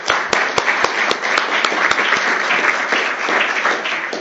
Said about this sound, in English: How about a round of applause for everyone?